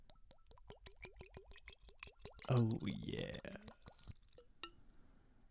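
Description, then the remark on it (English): Fine whiskey glugs out of a Stormtrooper glass carafe into Stormtrooper whiskey glasses in a quick, steady run of gurgles, then a voice speaks briefly over a few final drips and faint clinks. “We'll put up a picture at some point of the glasses we're drinking out of, but it is a fine whiskey out of a Stormtrooper carafe in Stormtrooper whiskey glasses.”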